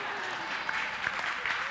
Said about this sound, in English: You can clap and say, go, go.